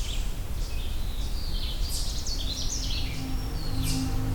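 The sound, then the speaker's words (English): A Canada warbler sings a quick, jumbled burst of bright chips and warbles from above the recordist, over a steady low rumble of background noise with no talking. “I think I've got a Canada warbler.”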